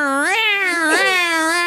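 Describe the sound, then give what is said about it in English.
A human voice imitates a cat with a drawn-out, wavering yowl, rising then sliding up and down in pitch, loud for nearly two seconds without a break. “I used to have a joke where I would say, I'm driving my cat to the vet, and the whole time I was like...”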